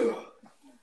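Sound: sneeze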